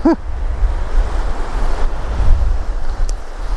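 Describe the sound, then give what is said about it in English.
Strong wind buffets the microphone on a beach, a loud continuous low rumble with gusting surges, and surf washing in the background. “Because it's very windy today.”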